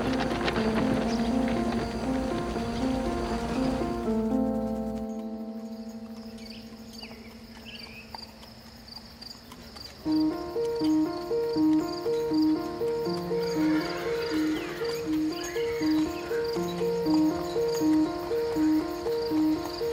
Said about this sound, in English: With a flick of the reins, they embarked on the short journey, the rhythmic clopping of horse hooves serenading their way through the serene streets of Shadowbrook Camp.